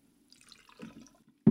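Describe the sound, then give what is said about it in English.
Liquid trickles and splashes briefly into a small mason jar shot glass of about 2 ounces for about a second, with a soft bubbly texture, followed by a sudden loud clunk at the end. No one speaks. “So I'm going to fill this up.”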